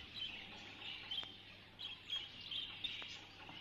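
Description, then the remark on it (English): A small red canary in a cage, with a red glow through its feathers especially at the throat, chirps in short, high tweets scattered irregularly over a few seconds, fairly faint against a steady background hiss, with no one talking. “But that's that bird now is not well colour fed, you know.”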